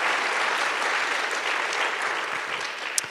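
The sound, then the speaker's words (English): An audience at a book event applauds steadily, a dense, even patter of many hands clapping at a constant level throughout, with no voices rising above it. “I heard the little, should we clap?”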